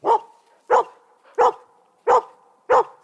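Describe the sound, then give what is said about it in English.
A dog barks five times in a steady, evenly spaced rhythm, each bark loud and sharp with a short tail, and no talking in between. “This dog is kind of a dick.”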